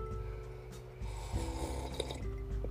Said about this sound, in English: One more sip of coffee.